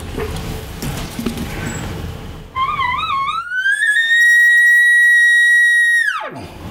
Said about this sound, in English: The one thing about a cow bugle is it doesn't have the depth of a big mature bull. It sounds more like an immature bull. And at the end of it, you know, they don't have that big growl.